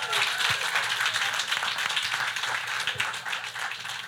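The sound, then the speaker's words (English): A group of people clap their hands in steady, dense applause to show appreciation for women who have just spoken, staying at an even level for about four seconds, with faint voices mixed underneath. “Let's show them appreciation by giving them a hand clap.”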